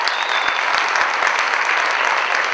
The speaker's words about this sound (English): If you're excited about that, give me a round of applause.